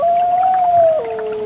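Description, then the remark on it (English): A gray wolf on the banks of the Rupert River in far northern Quebec gives a single long, clear howl holding a steady mid-pitched tone, then drops abruptly to a lower note and carries on, loud, with no voices around it. “A few years ago, I traveled to far northern Quebec, paddling the wild Rupert River, where I spotted a gray wolf prowling the banks.”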